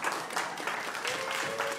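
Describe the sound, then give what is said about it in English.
A short burst of audience applause, a steady patter of many hands clapping at moderate volume for about two seconds, with no one speaking over it. “There's not more applause for trepanning out there?”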